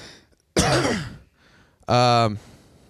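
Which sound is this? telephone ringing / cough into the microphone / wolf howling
cough into the microphone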